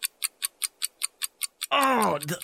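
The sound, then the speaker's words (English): A game timer ticks in a steady, quick rhythm of crisp clicks, about five per second, before a person's voice abruptly cuts in and talks over the end. “Here's your timer just to put the pressure on.”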